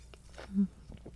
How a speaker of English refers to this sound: Hang on, I'm taking a sip.